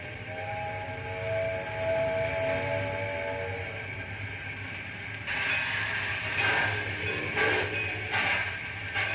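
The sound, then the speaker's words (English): A steam locomotive starts moving: a steady whistle sounds over a low mechanical rumble, then loud bursts of hissing steam chuff out in an uneven, quickening rhythm. No one speaks. “I said get the train underway, do you hear me?”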